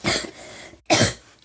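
Two harsh coughs separated by a brief pause, the second sharp and loud, with no talking around them.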